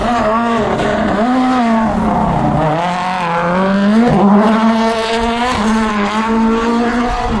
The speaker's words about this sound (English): That was Lappy going through in his Yaris.